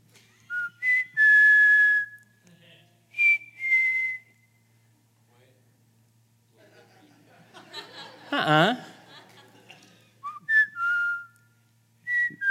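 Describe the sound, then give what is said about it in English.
A clear, piercing five-note whistle, used by a man to get his family's attention, with rising and sustained tones, followed by a short burst of laughter and then more whistled notes answering back. “If I want to get my family's attention, I whistle. Now, listen, it is a 5-note whistle that I have been doing since I dated”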